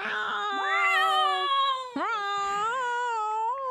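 Two cats yowl in long, drawn-out wavering cries that rise and fall in pitch, the voices overlapping at first, loud with no talking.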